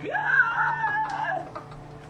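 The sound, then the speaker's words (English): A voice imitates an earth-shattering scream: a single shrill cry that shoots upward, holds for about a second, then wavers and fades. It is loud, with no talking over it. “And as you guys are kind of filing into the room, she sees Geth walk in, and there's an earth-shattering scream.”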